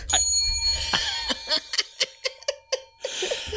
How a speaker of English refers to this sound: I have to get back into the groove of like the appropriate bell ringing when it comes to these things.